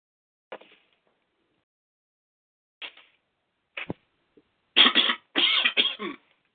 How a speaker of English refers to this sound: Excuse me for coughing. It's allergy season.